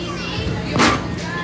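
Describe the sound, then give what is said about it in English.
Busy indoor arcade ambience at a Chuck E. Cheese in Torrance, California, with children's voices playing, crying and calling out in the background, steady and moderately loud, with a brief louder burst of noise midway. “Can you hear the children crying?”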